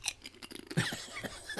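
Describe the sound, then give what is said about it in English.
Crunching on thick, hard Clancy's barbecue potato chips with less sugar: a quick run of irregular, crisp crackles and snaps with one louder bite midway, and no talking. “These would be great dip chips.”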